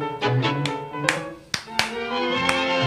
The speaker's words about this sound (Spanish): Son tres. Una es esta que escuchamos ahora. Les estoy haciendo palmas como para que les pinte bailar tango en su casa.